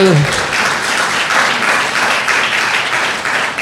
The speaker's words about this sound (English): Come on, give Jesus a clap offering